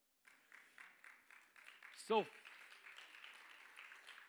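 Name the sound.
audience clapping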